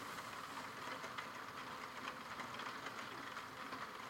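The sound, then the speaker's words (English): Steady rain makes a constant, even hiss of fine pattering, bright and fairly soft, with no talking and no breaks for the whole stretch. “I think I can hear your rain as well.”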